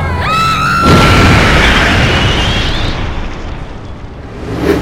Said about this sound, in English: We just lost power, something wild, damn! The plane, it's gonna crash! The what?